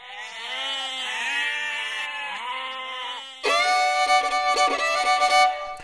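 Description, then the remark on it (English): Goats coming out of an orchard in the rain bleat loudly, one long wavering cry followed by a second, more strained and overlapping call, with no talking. “Goats emerged from the orchard as well, and they were the friendliest of them all.”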